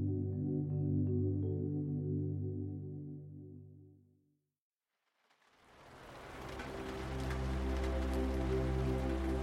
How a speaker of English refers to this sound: Heavy raindrops tap the window panes near Lily's bed. Every so often, a gust of wind tosses the rain towards the glass with slightly more force.